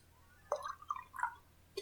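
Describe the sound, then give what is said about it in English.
A Foley sound of a drink being poured to refill a small glass, in a few short, gurgling glugs with a rising liquid tone, fairly quiet, with no one speaking, ending in a brief clink. “he says as he refills his little glass.”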